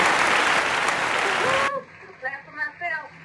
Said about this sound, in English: Ooh, we got to give a round of applause to that.